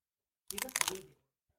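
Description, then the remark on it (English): A single loud crunchy bite into a chocolate-shell snack lasting about half a second, crackly and bright, followed by silence. “That is really good. Right? It's crunchy.”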